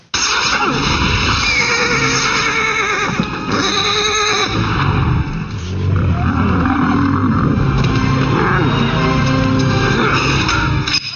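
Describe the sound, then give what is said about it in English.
A horse neighs and whinnies loudly and repeatedly, its shrill, quavering calls rising and falling over a dense rumbling background, with no one speaking, in a film scene where the horse is nerve-pinched. “You guys, they totally know Vulcan nerve pinched the horse.”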